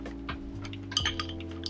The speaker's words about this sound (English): That's the microwave open.